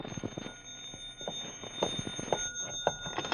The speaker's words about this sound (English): And then the phone rang.